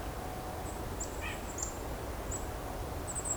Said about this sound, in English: I'm hearing golden-crowned kinglet too.